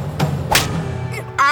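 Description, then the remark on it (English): A single sharp, crisp slap across the face as a woman slaps Chu Ba-Chi, a bright smack over a low background hum, followed moments later by a brief voiced cry. “Instead, she slapped him across the face.”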